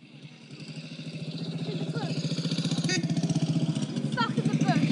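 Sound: motorcycle engine passing by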